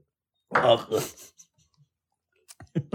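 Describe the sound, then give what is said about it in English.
A short throaty vocal burst, then a pause and a few wet mouth clicks and gulps as someone sips and swallows water thickened to a honey consistency. “So let's take a sip of the honey consistency, shall we?”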